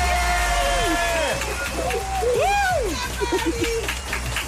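About 50 children cheering wildly after a correct answer in a music quiz, their high-pitched shouts and whoops overlapping in a steady, excited roar that swells and dips for several seconds.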